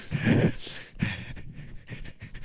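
A dog pants in quick, breathy bursts, the huffing rising and falling in an uneven rhythm for a couple of seconds, with no talking over it.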